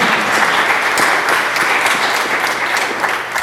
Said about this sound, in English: Everyone, a round of applause for supporting us.